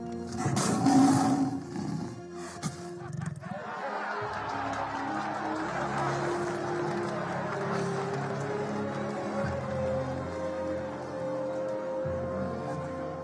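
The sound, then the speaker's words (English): A lion lets out one loud, deep, powerful roar over the first few seconds, then it gives way to a steady, sustained musical drone. “I don't speak lion, but I'm pretty sure Aslan just said, sit down and keep your mouth shut”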